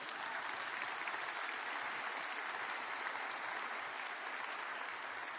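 A crowd applauds steadily, a dense wash of many hands clapping at an even level for several seconds with no voices standing out.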